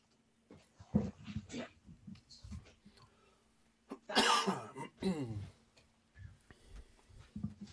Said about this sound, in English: oh, sorry, I have a dog. Hold on. So do I. It's all good. Let me, hold on. Let me grab her. Hold on.